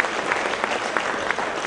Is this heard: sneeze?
no